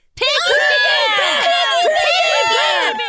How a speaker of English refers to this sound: The fans in front of the stage were shouting their names in a frenzy.